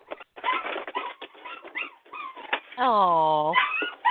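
A puppy whimpers and cries, a string of short, high whines and yelps building to one long, drawn-out wailing cry that slides downward before a final whimper.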